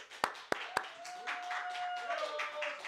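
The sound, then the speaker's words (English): Three sharp, evenly spaced hand claps ring out from a hired live crowd at a church service, followed by a steady wash of crowd noise and cheering, with a thin, sustained whistle-like tone running through it. “Just so you know, we hired a live crowd.”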